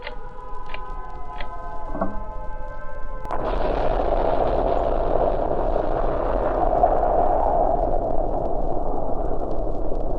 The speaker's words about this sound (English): I'm alive. But how? The explosion should have pulverized me.